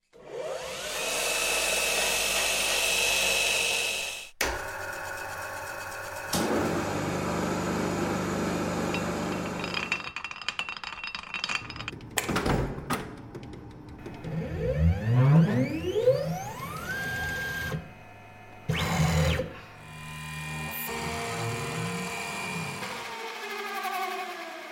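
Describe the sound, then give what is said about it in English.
Machines and power tools in a professional workshop turning on, operating and turning off: a loud steady whirring motor, then buzzing, clattering and rising whines as tools spin up and down, with sharp stops between bursts. No talking. “The Ironwork Machinery Library by Pole Position Production is field recordings of machines and tools turning on, operating, and turning off, all recorded in a professional workshop at 192 kHz, 107 clips and over 10 gigabytes.”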